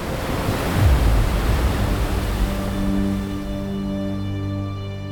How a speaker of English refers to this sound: That evening, in the blink of an eye, a massive rogue wave reared up over the ship. With the full weight of the ocean, it crashed down on the Mignonette.